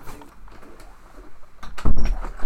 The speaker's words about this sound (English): Is it okay if I close the door, just for sound's sake?